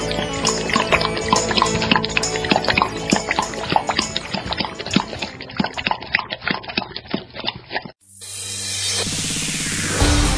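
Water pours and splashes in a busy, irregular stream of drips and gurgles for several seconds, fairly loud, then stops abruptly as a different, steadier sound cuts in.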